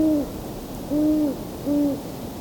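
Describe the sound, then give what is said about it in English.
Three clear hoots from male and female owls in a steady, evenly spaced sequence, each a smooth tone with a slight downward bend at the end, standing out over a quiet background. “Some of the best hooting was during that chorus, coyotes, but I had to be facing the wrong way with the microphone.”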